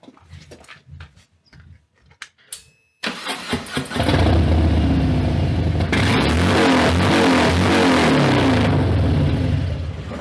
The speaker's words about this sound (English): You'll just have a minute of absolutely unregisterable audio as you rev your stupid motorcycle.